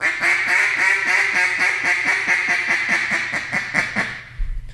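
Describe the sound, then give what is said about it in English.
A duck call blows a drawn-out boss hen quack: a long series of loud, rhythmic quacks, about fifteen evenly spaced notes over four seconds, clear, ending abruptly with a short thump. “What I like about a boss hen is, again, when they're coming around that corner and you feel like they're not doing anything, you're calling at them, they're not reacting, is you'll throw that boss hen out, and I'll drag that boss hen out like this.”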